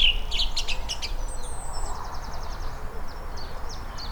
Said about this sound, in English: And the song thrush. I'm just going to get a little bit of this song thrush. Try and work out where he is.